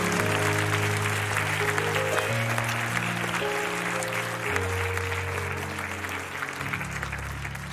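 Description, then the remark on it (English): A church audience gives God a hand clap offering, clapping steadily and loudly for several seconds, a dense wash of hand claps over sustained organ chords that shift pitch underneath, with no speech. “Let's give God a good hand clap offering.”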